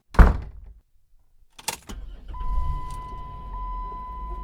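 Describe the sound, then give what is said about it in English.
A door shuts with a solid thunk as a person walks out the door of their workplace, then after a pause a door opens and closes again sharply, followed by a low vehicle engine rumble and a faint steady electronic tone. “They grudgingly accept after a heated debate and I walk out the door.”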